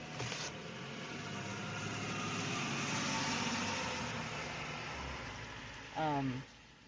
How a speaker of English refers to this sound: There's a bus coming by.